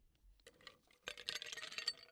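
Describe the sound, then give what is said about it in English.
Ice cubes are put into a cocktail shaker to chill a cocktail, a quick tumble of bright clinks and rattles that starts softly and builds to a dense burst of jangling impacts for about a second. “I think we should maybe we'll do a shaker just so it gets cold. Okay, put some ice in there.”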